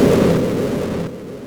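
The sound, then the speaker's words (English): A heavy, booming thud as a massive giant falls backwards and lands on the ground in a cave, shaking the whole cave, loud, followed by a low rumbling tail that fades out quickly. No voices. “And then that massive giant fell backwards and hurtled down, down, down, landing with a thump.”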